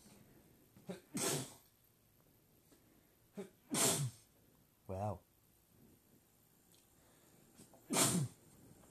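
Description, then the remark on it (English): Three loud, explosive sneezes, each preceded by a short sharp inhale, spaced a few seconds apart. Between the second and third, a person briefly exclaims. “Have you ever heard a podcast with three big sneezes like that?”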